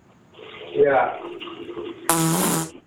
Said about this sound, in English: Now people are going to think you're... They're going to think you're farting in there. Those are some trumpet blasts.